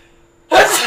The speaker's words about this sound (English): Ah, sorry. That was the most violent sneeze ever. Yeah, it was. Oh, my allergies. Rest in peace, anybody who had headphones in for that moment.